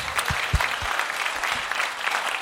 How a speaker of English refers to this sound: We understand some people have travelled. Some people have come from Norwich. Like, that's impressive. Thanks. Yeah, round of applause to those people.